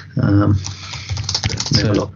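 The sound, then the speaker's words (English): Rapid tapping on a computer keyboard, a quick run of light plastic clicks, with muffled voices murmuring at the start and end. “Tapping of the keyboard at my end.”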